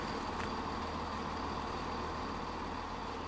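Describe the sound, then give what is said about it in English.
A train to London arriving at a station platform, a steady, dense low rumble with a constant mechanical hum, a brief hiss near the start, and no voices. “Looks like ours is arriving.”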